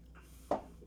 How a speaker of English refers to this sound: Now, let me take another sip of this guy.